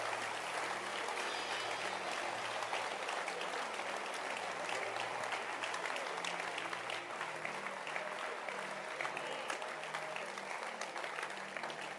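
An audience claps steadily for several seconds, a dense, even wash of many hands with a faint murmur of voices underneath and no single clap standing out.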